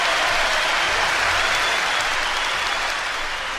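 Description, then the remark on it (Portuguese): A large audience applauds steadily in tribute to Brazilian popular musicians, at a celebration of 25 years of a band: a dense, even wash of many hands clapping at once, sustained loudly and without pause from start to finish. “E é para esses três homens que eu peço uma salva de palmas muito especial.”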